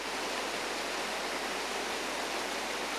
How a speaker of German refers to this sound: Und ich möchte es euch ganz einfach illustrieren, was das für einen Jude, eine Frau und einen Mann bedeutet. Das Gefühl, es regnet. Es regnet.